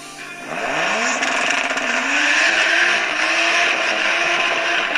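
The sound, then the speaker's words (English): A car engine revs up loudly, its pitch climbing quickly and then holding as a steady, throaty roar while the vehicle passes. No one speaks. “Yeah, waiting for a couple cars.”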